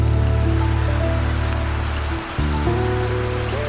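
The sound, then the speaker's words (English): Steady rain patters continuously on a surface on a winter day in May at the Baxburg Estate Cellars wine farm, on the lower reaches of Simonsburg Mountain near Paarl and Stellenbosch, South Africa. It is layered over a low, droning mechanical hum that briefly dips and returns; no one speaks. “It's raining on and off on a winter day in May when I stop by the Baxburg Estate Cellars.”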